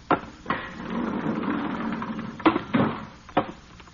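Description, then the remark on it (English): Another door off a control room being opened, with a few sharp wooden clunks spread over several seconds and a low, rough scraping rumble in between. Moderately loud, with no talking. “Ain't that another door over there?”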